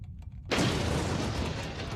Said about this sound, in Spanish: Una última metedura de pata y un fallo de diseño bajo condiciones extremas lo llevó a un embalamiento neutrónico. Tiene mal arreglo eso. Se produjo una excursión de energía y dos grandes explosiones a la 1 y 24 de la madrugada.